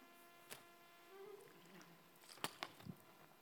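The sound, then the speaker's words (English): Someone takes a sip of a drink, with soft slurping and a few quiet gulps and mouth clicks against a low background hum. “Excuse me while I just take a sip.”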